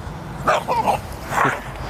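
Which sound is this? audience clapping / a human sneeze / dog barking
dog barking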